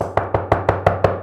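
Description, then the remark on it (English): Six quick, evenly spaced firm knocks on a door, rapping in a steady rhythm with no voices present. “Open the door, brother.”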